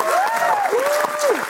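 An audience breaks into a steady round of applause, dense overlapping clapping at an even loudness, with a couple of long, sliding whistles or cheers arcing over the top.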